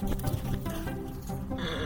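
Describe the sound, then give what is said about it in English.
Horses neigh in a stable on a horse farm with 22 stalls, each holding at least one horse, with hooves clip-clopping, a steady stretch of animal calls and shuffling that fills the short moment without pause. “It is very big with 22 stalls. In every stall, there's at least one horse, and this is where they sleep, eat, and drink water, and they rest here until we let them out into the pasture.”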